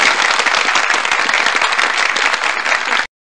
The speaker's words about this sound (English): Timmy gets a big hand of applause there for his husbandly duties.